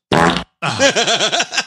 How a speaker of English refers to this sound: It was a very delayed fart.